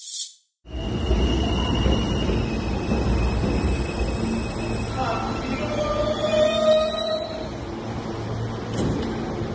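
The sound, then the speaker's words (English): A subway train rumbles steadily along the rails, loud, with metallic wheel squeals rising midway. Indistinct voices are faintly mixed into the din. “Not because of that, but because he rode a subway without a mask.”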